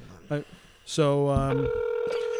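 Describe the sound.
Electronic telephone tones as a phone call is dialed: a short beep, then a longer two-tone dialing sound shifting into a steady held tone, with a brief voice-like burst in between.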